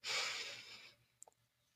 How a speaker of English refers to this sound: Let's take a couple deep breaths. Breathing in.